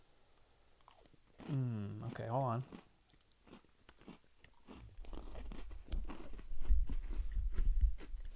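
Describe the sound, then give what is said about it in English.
Crunchy chewing of dry, cinnamon-flavored Cinnamon Toast Crunch cereal, with repeated crisp bites and munching that grow louder toward the end, after a brief spoken remark. “There's definitely some sort of cinnamon flavor in there. This is not a chocolate wafer.”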